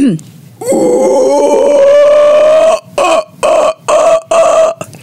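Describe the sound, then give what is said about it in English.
A man imitates a howler monkey: a long, rough, throaty roar at a steady low pitch, followed by four shorter, loud guttural bursts in a choppy rhythm. “So you know how to call a howler monkey? I call howler monkeys.”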